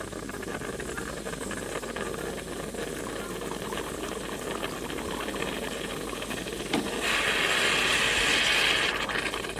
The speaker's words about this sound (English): That is the sound of hot water being pushed through freshly ground coffee, which eventually leads to the pouring of coffee and then the drinking of coffee.